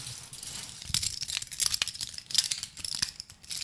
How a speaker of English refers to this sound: Plastic fork, knife, or spoon. Yes. Yes.